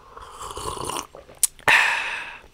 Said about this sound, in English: And take a sip of coffee here.